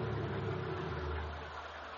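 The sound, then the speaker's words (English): A car engine idles as the car arrives, heading toward the people waiting, with a steady low rumble and a slight drone, continuous for the whole stretch, easing a little toward the end. No one speaks. “Hey, that's not my car.”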